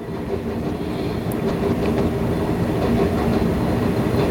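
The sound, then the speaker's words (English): A train rumbles steadily past, a dense low roar with faint rhythmic clatter of wheels on track and a brief high squeal, loud, with no voices. “Nope, I just listened to the train, couldn't think of anything.”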